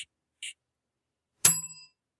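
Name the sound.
small bell being rung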